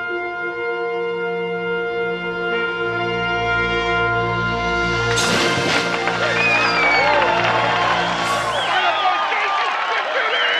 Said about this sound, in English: And they're cheering like it's the best f***ing thing they've ever seen. Are you f***ing kidding me right now? Well, they're cheering for the worst f***ing thing ever.